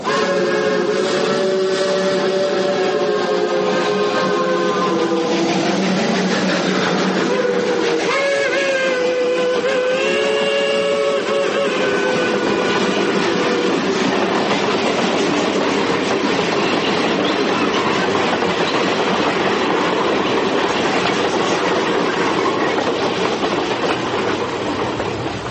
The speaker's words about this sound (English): After what seemed an eternity of silence between us, the train entered a tunnel. It was like the fall of a curtain.